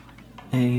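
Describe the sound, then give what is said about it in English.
After a brief quiet stretch, a key on a small keyboard sounds a single steady electronic note that starts abruptly and holds loud until the end. “Okay, the little keyboard definitely doesn't work.”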